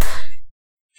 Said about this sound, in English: I'll count down the 3, 2, 1 clap like I did before. 3, 2, 1.